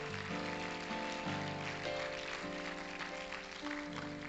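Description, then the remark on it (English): A church audience claps their hands to the Lord during a service in a dense, sustained wash of applause that holds steady throughout, with sustained musical tones sounding underneath. No one speaks. “Would you clap your hands to the Lord again?”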